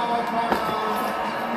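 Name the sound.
wrestling arena crowd cheering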